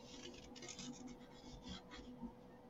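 A sharp pencil scratches steadily across cardboard in short, uneven strokes, drawing out a layout and going through the cardboard, a fairly quiet dry scraping with a faint low hum underneath and no talking.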